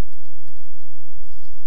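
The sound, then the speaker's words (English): Rapid typing on a computer keyboard in a closet, a run of light plastic clicks in an uneven rhythm, fairly loud, with no voices over it. “In fact, if you just hear this lovely clicking on my keyboard”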